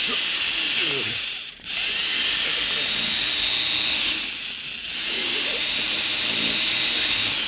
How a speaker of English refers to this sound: Do you think I've drill into this vault deep enough now